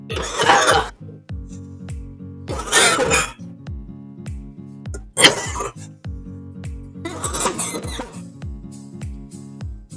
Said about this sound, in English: All right, I'm going to light this baby up. Goddamn, prepare to cough. It's coming for you just like it came for me.